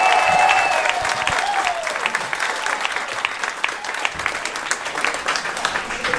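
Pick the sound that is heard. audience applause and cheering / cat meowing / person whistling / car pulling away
audience applause and cheering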